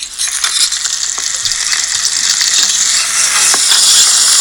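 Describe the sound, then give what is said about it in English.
Bacon and sausages sizzle in a hot pan with a little oil, a steady bright hiss dotted with sharp crackles and pops that grows slightly louder over the few seconds, with no one speaking. “Well, I think what we'll do first is add the bacon and you know, and some sausages there into the steaming hot pan.”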